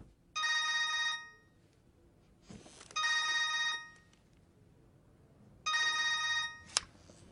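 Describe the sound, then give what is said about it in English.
A dead man's phone, called back, rings in three long electronic bursts, about a second each with pauses between, clear, followed by a brief click; no one speaks. “But then Billy's like, all right, call it back.”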